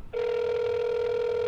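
A steady electronic ringback tone of an outgoing phone call begins after a brief pause and holds unbroken and loud, with no voices.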